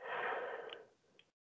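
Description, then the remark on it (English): A single quiet, breathy yawn from an old man swells and then trails off over about a second, followed by a couple of faint clicks in an otherwise silent background. “Is that a yawn? It is.”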